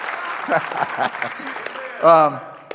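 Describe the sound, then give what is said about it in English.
Steady audience applause on Mother's Day, honoring the speaker's wife: a dense patter of many hands clapping, with scattered voices mixed in and a loud cheer rising near the end. “Would you join me in honoring her? The louder you clap, the better it is for me.”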